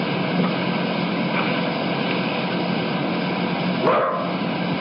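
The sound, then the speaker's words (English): A single short dog bark near the end, muffled and partly buried in constant loud static hiss, with no talking. “Is that a dog? The spirit barks, yeah.”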